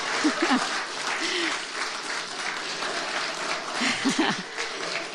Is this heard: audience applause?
yes